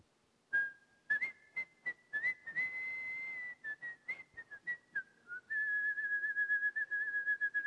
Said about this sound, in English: when you wake up in the morning and you want to call your shepherd, you only needed to whistle.